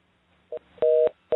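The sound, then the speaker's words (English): A telephone line tone sounds over a thin, band-limited connection after a new number is dialed on live radio: a short beep, then a longer steady tone, then another tone starting. The tones are loud and clear, with no one talking. “I'm going to be trying a new number. Let's dial him up and see if it works.”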